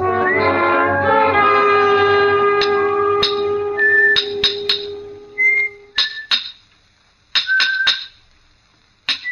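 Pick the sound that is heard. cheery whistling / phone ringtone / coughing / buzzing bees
cheery whistling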